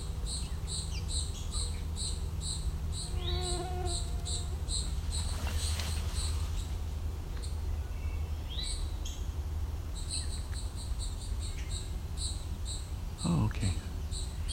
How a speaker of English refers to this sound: It's an eastern towhee calling and something very angry. I don't know what. It's small.